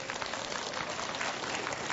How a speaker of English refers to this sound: I notice all the ladies clapping.